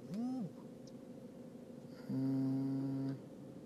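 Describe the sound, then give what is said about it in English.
Noisy, labored breathing of a baby with a harsh, raspy tone: a short wheezing breath followed by a longer, steady rattling one, fairly loud. “My baby started again. I don't know what's wrong with her. She's not breathing fine.”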